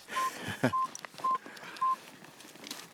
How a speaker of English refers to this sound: So guess what's just beeped in my pocket? I've just felt it. My Aurora alert.